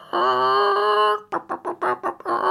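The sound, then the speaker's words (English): A father imitates a chicken, speaking chicken language: a long drawn-out squawk, then a quick run of about five short, rhythmic clucks, ending on another squawk. Loud, with no other talking. “I can speak chicken language, actually, yes.”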